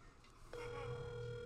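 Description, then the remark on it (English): A phone call back to a woman rings out: after a brief quiet moment, a steady electronic ringback tone begins and holds unbroken to the end, with no talking. “Let's call her back. See what Hester's up to.”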